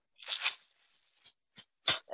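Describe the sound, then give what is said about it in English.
A corn rattle being shaken in a few separate bursts, each a dry, bright, crackling rustle, the first longer and sustained, followed by shorter sharp shakes. “And then this one's made out of corn. You can get a closer look. Oh, that's incredible. Give that a shake.”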